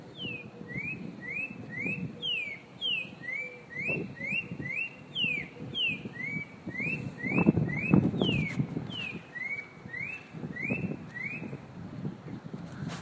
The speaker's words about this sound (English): And what are we listening to right now? We're listening to a Spot Breasted Oriole, Your Life Bird, You Lucky Sucker, You.